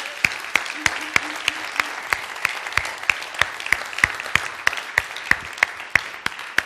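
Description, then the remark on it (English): An audience applauds its senior pastor in the morning, steadily for several seconds, a dense wash of overlapping hand claps with sharper individual claps popping out, even in loudness, with no talking over it. “Can we clap for our senior pastor this morning?”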